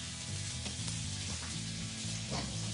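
Beef sizzles steadily in a hot pan as it cooks, about to be flipped, a dense crackling hiss with a few brief louder spits and pops, no voices.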